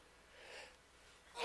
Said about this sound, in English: I start sneezing. I just keep going.